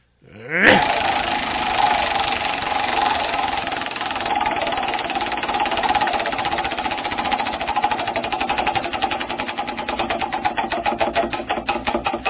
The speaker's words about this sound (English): I will spin the wheel since I think you're out of energy, and we'll find out who our winner is.